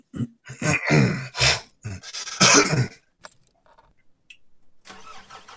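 A car engine cranks over in a few loud, rhythmic bursts, pauses briefly, then catches and settles into a low, steady idle, with no talking.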